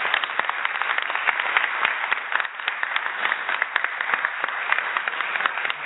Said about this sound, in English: He's been doing a great job, so let's please give him a round of applause.